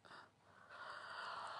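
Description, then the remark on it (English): One breathy, drawn-out yawn at 2 o'clock. It starts with a short intake and swells into a longer airy exhale, fairly quiet, with no talking. “Yes, I was yawning, and it's 2 o'clock.”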